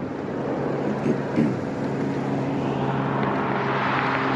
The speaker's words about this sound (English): Oh, here's an airplane. Can you imagine flying in an airplane over the Grand Canyon?